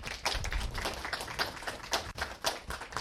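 Audience applause for the moderator at the end of a panel discussion fills the whole stretch, a dense, steady patter of many hands clapping at once, moderately loud with no voices standing out.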